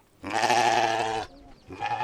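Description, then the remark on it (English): A sheep bleats loudly in one long wavering call, followed by the start of a second bleat, with no one speaking; one of a dozen or so alabaster-coloured sheep being fed in a small compound. “The dozen or so animated alabaster-coloured sheep that he's feeding in his small compound are an indication of his former wealth.”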